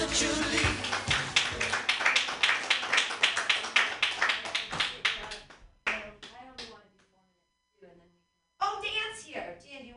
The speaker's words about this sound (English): I'm going to do like just a couple minutes of jokes, so clap for me. Yay.